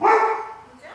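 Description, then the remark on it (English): A single loud bark from a female dog rings out, its sharp onset trailing off into a fading, somewhat tonal tail within a second. “She wouldn't bark if it was something.”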